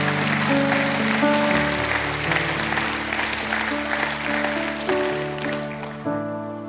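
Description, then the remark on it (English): An audience at a church service gives the Lord a hand clap of praise, clapping steadily and loudly for several seconds, a dense wash of hand claps layered over sustained organ chords that shift pitch and swell near the end. “Give him the hand clap this morning.”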